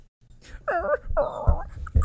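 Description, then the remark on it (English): A dog whimpers twice in close succession, high wavering whines, with soft thumps and handling noises and no talking. “All the listeners, this is my new dog.”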